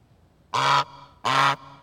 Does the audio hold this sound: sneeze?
no